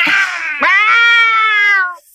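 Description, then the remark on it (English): A single drawn-out cat screech, loud, rising sharply then holding a strained, wavering yowl for about two seconds before cutting off; in a horror movie, it is the sound heard when a haunting ghost child opens his mouth. No talking. “I hate the fact that when he opens his mouth, it's a cat screech that you hear.”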